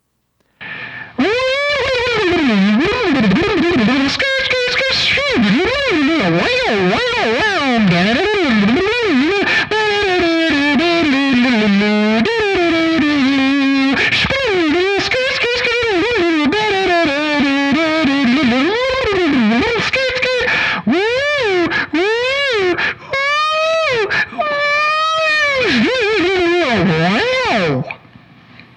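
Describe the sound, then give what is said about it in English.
A distorted electric guitar plays a continuous melodic riff from a cover song, with bending, wavering notes and rich harmonics, loud and steady for nearly half a minute with no voices. “I wonder if you guys could figure out what I'm covering if I just play you a little snippet here.”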